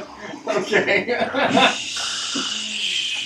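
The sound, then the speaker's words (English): Several people make mock snoring noises, starting with bursts of giggly, voiced snorts, then trailing into a long, steady, breathy rasp. Moderately loud, with no words spoken. “Should we all start snoring so that no one else notices it's coming from her?”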